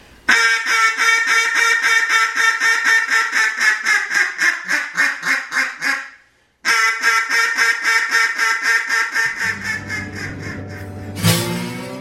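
A duck call blown in a fast, steady series of loud, nasal quacks, pausing briefly before another quick run of quacks tapers off, with a low hum and a sharp burst near the end.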